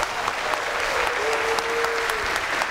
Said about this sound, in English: the First United Methodist Church of Fort Worth, to teach them in the faith, to make sure that they are established and confirmed in the way that leads to life eternal, would you please indicate so and welcome them by your warm round of applause.